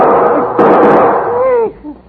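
A sudden loud, sharp gunshot bursts out over a dense, rumbling background in front of a house on Mulholland Drive, followed by a brief wavering vocal cry before the sound cuts off.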